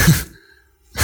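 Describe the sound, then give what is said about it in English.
A baby boy's soft snore: a breathy, rasping breath, a brief hush, then the next breath starting. Fairly loud, with no talking. “That's my baby son snoring over there.”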